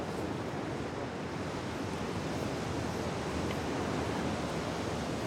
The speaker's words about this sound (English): Because it's a sunny day now, but the wind's definitely whistling in, you know, so I don't know if your fingers are getting cold, but it is quite chilly, isn't it?